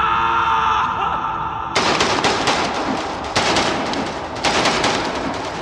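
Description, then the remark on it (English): A low, tonal drone gives way to loud, sustained rapid rifle gunfire in a tunnel as the trigger is held down, bursts of shots rattling in quick succession with a booming, reverberant tail echoing through the tunnel. “He clenched the trigger and held, bullets exploding from his rifle, filling the tunnel with fire and thunder.”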